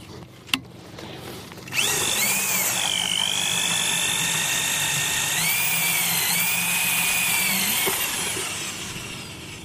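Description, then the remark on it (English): After a sharp click, a motorized drill whines steadily for about six seconds, its high pitch dipping and rising under load, then stops, as a scientist drills ice cores in Antarctica for temperature and salinity profiles. Fairly loud, with no voices. “Klaus Meiners is drilling an ice core.”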